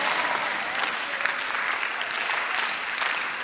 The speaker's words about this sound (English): Oh, if you are clapping for Abraham, I think you should clap properly for Abraham.